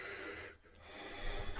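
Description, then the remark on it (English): Heavy, raspy breathing: a loud, airy exhale, a brief pause, then another strained breath that swells louder toward the end. No words are spoken. “Heavy breathing.”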